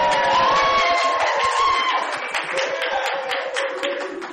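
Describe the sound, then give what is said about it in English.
A live audience cheers and whoops nonstop for about four seconds, a dense, harsh roar with high shouts rising over it, so loud it sounds overloaded throughout. “Completely pegged the meter there, so it would be a mess.”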